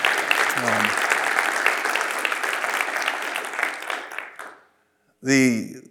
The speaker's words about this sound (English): Yeah, give him a hand clap. We thank God for him.